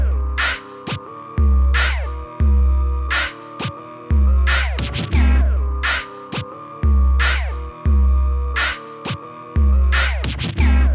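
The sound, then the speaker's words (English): An instrumental hip-hop beat loops steadily with deep, throbbing bass pulses and sharp percussive hits, layered with squawking, crow-like sampled sounds; no one raps or speaks yet. “But, like, the beat starts and goes a little bit, and then he just starts rapping, like, in the middle of it.”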